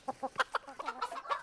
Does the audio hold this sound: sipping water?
no